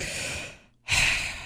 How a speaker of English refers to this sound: Deep gasp.